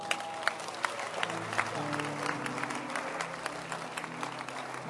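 An audience claps steadily for several seconds, a dense, continuous patter of many hands with a few sharper claps standing out, over a faint low murmur.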